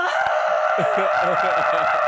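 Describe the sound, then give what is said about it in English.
A person imitates a screaming arrow in flight toward a wraith with one long, loud, high-pitched shriek held steadily for about two seconds, strained and wavering slightly throughout. “I didn't know I had screaming arrows.”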